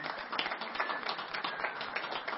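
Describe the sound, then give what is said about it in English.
An audience applauds the ladies being honored that day: dense, crackling clapping from many hands that holds at an even, fairly loud level throughout, with no voices rising above it. “Will everybody join me in offering a hand of applause for our ladies today?”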